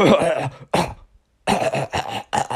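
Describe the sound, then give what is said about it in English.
A voice imitates a kid's loud, harsh cough during a class presentation: a couple of rough bursts, a short silent pause, then a quick run of several more coughs, forceful. “oh, kid had to cough, like whatever.”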